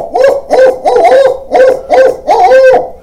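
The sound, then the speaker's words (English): A man imitates an owl with his voice alone, without a call in his mouth, giving a rhythmic series of about six loud hoots in quick succession with brief gaps between them, no speech. “I'll hoot with my voice.”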